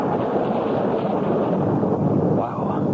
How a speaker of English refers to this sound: Dump windshield wipers are worse than nothing. Just slosh the rain from one side to the other.